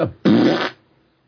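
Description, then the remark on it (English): A short, loud, wet fart bursts out for about half a second, sputtering and low, preceded by a brief softer blip and followed by near silence. “That was a poot. Possibly a shart.”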